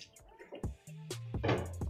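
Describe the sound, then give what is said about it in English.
Drinking noises: a bottle or cup of water being handled, then a few wet gulps and swallows with soft breathy sounds in between, no one talking. “Let me get a swig of this motherfucking water.”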